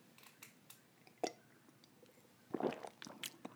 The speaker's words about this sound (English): Excuse me for a second while I have a sip of my tea.